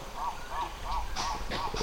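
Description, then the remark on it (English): Birds call repeatedly along a riverbank in the Chinko region in a steady rhythm, about five nasal, honking cries in quick succession, with some rougher rustling noise joining toward the end. No voices. “The riverbanks are buzzing with monkeys and birds.”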